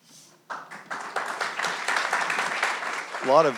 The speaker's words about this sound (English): A lot of cheering for paper. That's a good start.